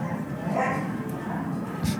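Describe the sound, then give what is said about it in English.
Puppies playing indoors bark and yip in short, excited bursts, a couple of high yelps rising over a steady background hum. “And the puppies make an appearance on the show.”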